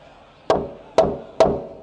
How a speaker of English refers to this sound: The defendant is found guilty. As the gavel fell with a loud bang, filling the courtroom, the defendant flinched at the sound as he tried to hold his heartfelt sorrow back.